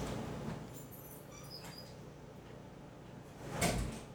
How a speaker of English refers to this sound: They're opening the front door now.